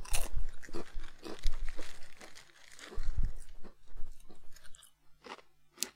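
Crisp, irregular crunching from someone chewing potato chips, with sharp bursts of brittle crackling and softer chewing in between, fairly loud and without any talking.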